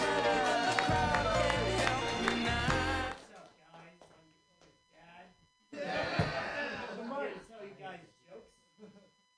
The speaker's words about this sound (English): Your next comedian, clap your hands together, everybody,